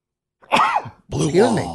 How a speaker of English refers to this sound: I just sneezed a green wall out of my nose.